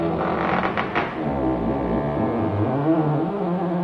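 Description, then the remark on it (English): A house creaks in a long, low, groaning drone that holds steady for several seconds, with a few brief crackling ticks early on. The sound is loud and there is no talking. “The house was creaking all night.”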